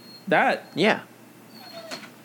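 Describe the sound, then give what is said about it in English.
A dog lets out two short, whiny yelps in quick succession, fairly loud, with a brief pause between them, followed by quiet background noise. “Chill out, dog.”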